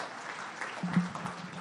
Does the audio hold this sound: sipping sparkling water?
no